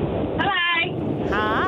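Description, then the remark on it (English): Steady, rough wind buffeting a caller's phone microphone in Maroochydore, a loud, muffled rushing roar that fills the whole line, with brief bits of a voice poking through it. “Everyone's calling us with their hands freeze out the window today. Yeah, exactly. Is it windy out there right now?”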